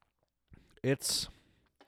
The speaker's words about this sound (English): All right. Well, we're both on beer too. Yeah. Where are we at sipping scale, brother? Let me get a quick sip to remind me.